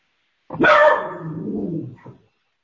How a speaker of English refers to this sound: Got a barking dog.